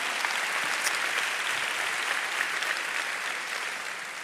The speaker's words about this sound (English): Can I have an amen and a clap for Jesus? Hallelujah.